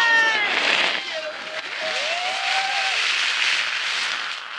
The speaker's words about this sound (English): That's me, spraying one of the company's employees with a fire hose full of soap suds. This is part of their official welcome when a newcomer visits the company.